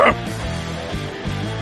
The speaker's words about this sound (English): Yeah. Is this a bark? I heard a bark.